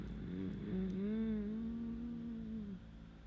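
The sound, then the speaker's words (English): A Mustang car engine roars past outside, its low droning pitch climbing, holding steady, then dropping away over a few seconds, with a constant rumble underneath and no voices. “I wish somebody would fucking run that Mustang off the road.”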